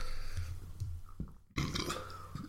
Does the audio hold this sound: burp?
yes